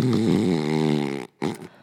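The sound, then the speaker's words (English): A person lying on a couch makes a loud snoring sound: one long, buzzing, rattling breath, a brief pause, then a shorter snore. It sounds like a voice imitating snoring rather than real sleep. “You have to think of the snoring like a sound bath.”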